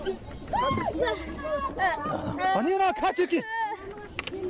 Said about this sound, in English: Tear gas grenades scattering the crowd.